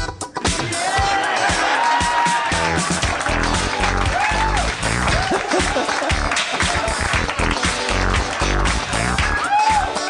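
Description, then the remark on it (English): A large crowd applauds and cheers loudly and continuously for about ten seconds, with whoops and shouted voices rising above the dense wash of clapping. “When you hold your head real still, people applaud.”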